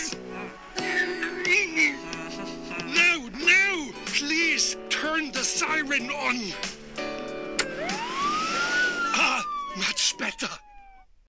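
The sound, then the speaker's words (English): A voice imitates the siren of a police car with Wiggum in it, a string of wavering, rising-and-falling wails, ending in one long upward sweep that slowly glides back down, loud. “Begs him to put on the siren.”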